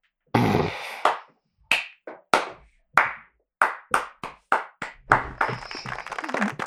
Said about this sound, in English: Gotta give my little clap.